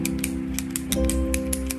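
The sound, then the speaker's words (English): Ballpoint pens clicking for office ASMR in a quick, uneven series of sharp, crisp ticks, about ten in under two seconds, over a steady low droning hum, with no talking. “A lot of people are into the ASMR office ASMR. With those ballpoint pens.”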